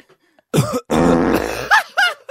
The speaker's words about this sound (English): normally you might hear a fart and then a cough because someone's trying to cover up the fart, but this guy's trying to cover up a cough with a fart. The confidence, that's amazing.